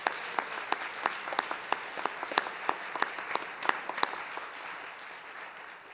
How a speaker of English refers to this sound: I just want to give a round of applause to Active Voices for what you do for us.